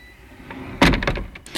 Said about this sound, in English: That's just the wind blowing the door open and closed. I know that, I'm not crazy.